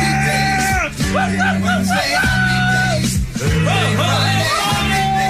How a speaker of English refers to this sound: Why are you yelling over the song?